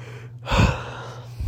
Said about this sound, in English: Sorry, I keep yawning, I'm super tired.